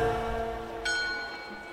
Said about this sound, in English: As we leave the afternoon bells of the iconic Old Town Square behind us